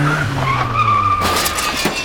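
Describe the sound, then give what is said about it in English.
A car's tires squeal in a loud, sustained skid over a low engine rumble, followed by sharp noisy bursts that sound like a crash and impact, as an unlicensed young driver in his father's car crashes into a neighbor's shed. “He ended up crashing into his neighbor's shed, causing extensive damage.”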